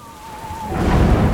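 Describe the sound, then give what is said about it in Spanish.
Steady rain hisses at night while a low rumble of thunder swells in partway through, growing louder and deeper toward the end. A faint thin tone fades out early on; no one speaks. “Fue una noche que llovía, truenos, todo era propicio para que se diera.”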